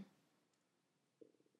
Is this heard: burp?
yes